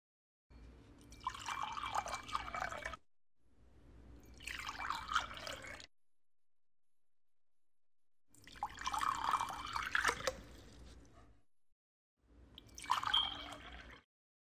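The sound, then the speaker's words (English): Two cups of water are poured into a glass in four separate bursts, each lasting a couple of seconds with short silent pauses between, splashing fairly loud with no talking. “First, you're going to want to pour yourself 2 cups of water into a glass.”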